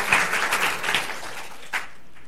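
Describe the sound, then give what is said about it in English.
A short burst of applause from a church audience after a music performance, many hands clapping in a dense, crackling patter that thins out and fades after about two seconds, with no voices. “I think that deserves applause.”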